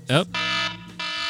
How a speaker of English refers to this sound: All right, everybody. Timer is gone off.